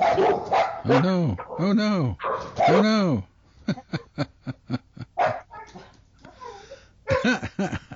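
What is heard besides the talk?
dogs barking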